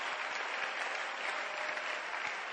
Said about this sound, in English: Can you clap your hands for the man who is projecting the scriptures?